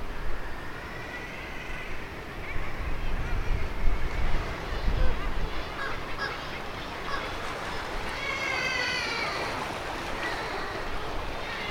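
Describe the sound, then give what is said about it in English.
Harsh, overlapping seabird cries ring out repeatedly below sea cliffs, echoing off the rocks, over a steady roar of surf and wind. “And it sounds like it's a sort of echo chamber down there, and you can hear the sound echoing around of their cries, can't you, off the rocks of the cliffs.”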